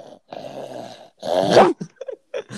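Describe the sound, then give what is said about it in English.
A person imitates a dog's growl, starting with a low rumbling drone, then a louder, rougher snarl that breaks off into a few short guttural bursts. “Girl, that is, I can do the growl, dude, too.”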